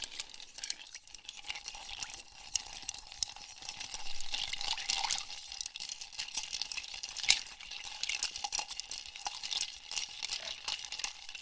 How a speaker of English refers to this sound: now we're going to go ahead and put some ice in here. And now we're going to stir to dilution.